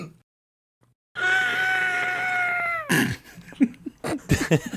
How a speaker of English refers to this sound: can you try and scream your lungs out inside, but hold your hand over your mouth?